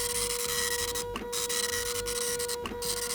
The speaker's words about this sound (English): Oh, and I hear Carl printing out the first question.